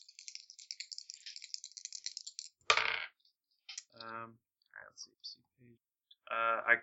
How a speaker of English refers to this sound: I'm rolling two dice for this. Three. I got two eights, so three eights with the fast.